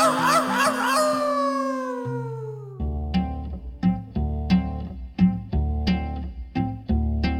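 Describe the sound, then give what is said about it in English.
A wavering, coyote-like howl slides downward for about two seconds, sounding like a voice imitating the animal in a song about a coyote howling at the moon, then gives way to a steady, plucked musical beat. “and one little coyote was howling at the moon.”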